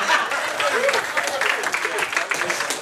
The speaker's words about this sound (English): Do you want to present them with the prize? Round of applause. Come on, this is a church. We've got to encourage.